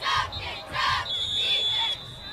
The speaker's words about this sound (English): Got a whistle and maybe a timeout here. Blackman does call a timeout to talk things over.